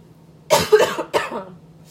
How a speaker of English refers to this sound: And I have to cough.